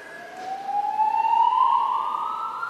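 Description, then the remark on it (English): A wailing alarm siren sounds alone, one steady tone slowly climbing in pitch and holding loud and continuous throughout, with a faint background hiss and no voices. “And the alarm's going off. Does that mean we have to evacuate?”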